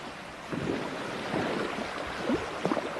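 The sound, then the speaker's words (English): Sea waves wash steadily onto a shore in a continuous broad rush, swelling slightly at moments, with a few brief faint tonal calls rising near the end. “After traveling for many days, they reached the shores of the sea.”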